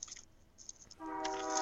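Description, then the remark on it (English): A passing train makes hissing, rushing rail noise that gives way to a loud, sustained train horn blast, which begins partway through and holds steady to the end, with no voices. “How long of a fucking train is that?”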